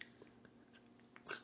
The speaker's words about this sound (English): You can actually hear my mouth open. The mic picks up my mouth opening as I do it.